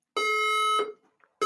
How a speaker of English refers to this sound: I've got a fire alarm going off